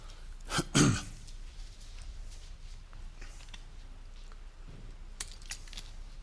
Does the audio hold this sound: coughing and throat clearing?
yes